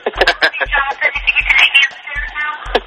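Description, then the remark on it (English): A two-way radio at the speaker's work crackles to life in the background with a burst of tinny, band-limited voice chatter running for a few seconds, punctuated by low thumps. “What was that? That's man. My radio. I'm at work right now.”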